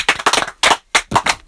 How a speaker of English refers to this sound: Let's give him a round of applause, folks.